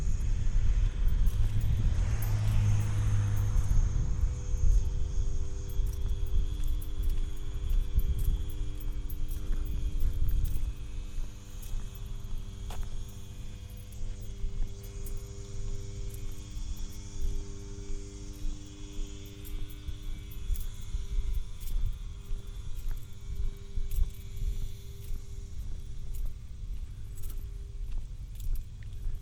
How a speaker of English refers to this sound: Generator. It would have drowned me out.